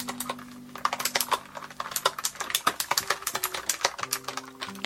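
Rapid, uneven keyboard typing with crisp clicking keystrokes in quick bursts, steady throughout, over a faint low hum; no voices.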